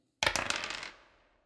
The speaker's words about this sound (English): So double, you roll 2 dice.